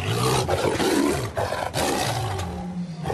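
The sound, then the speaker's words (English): A captive male Sumatran man-eating tiger roars in a cage in deep, rumbling bursts, loud, with broad growling texture sustained across the few seconds and brief pauses between surges. “you're observing one of the captured Sumatran man-eating tigers in a cage”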